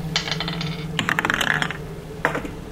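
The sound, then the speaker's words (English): Dice clatter across a hard tabletop in a few quick bursts of sharp, rattling clicks, fairly loud, as several players roll their dice for a stealth check, with a final short tumble at the end and no talking. “You're all holding your dice. Mm-hmm. So, okay, what are your rolls?”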